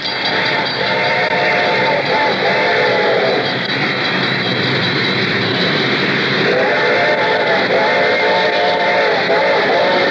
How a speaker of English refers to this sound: The train was coming closer. I could hear its bell ringing and the cry of its whistle.